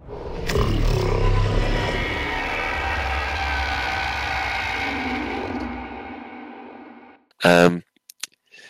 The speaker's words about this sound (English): the legendary new Thargoid roar that occurred at the end of the Daddy Savlon death cutscene